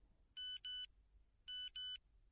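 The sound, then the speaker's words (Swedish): A text message alert from an old mobile phone in a pocket, which also vibrates: two quick pairs of bright electronic beeps, a short pause between the pairs, sounding clearly against a quiet background with no one speaking. “Det vibrerade till i fickan där jag hade den gamla telefonen från förr. Ett nytt sms från Jonas mobil.”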